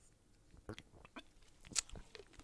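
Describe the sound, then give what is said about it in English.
A quiet sip from a drink: soft wet mouth clicks and swallowing noises, with one brief sharper slurp near the end and no talking. “Let me take a sip here.”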